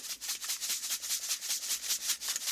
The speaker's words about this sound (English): So you're going to fill a bowl with some water. And then you're going to sprinkle some black pepper onto the top.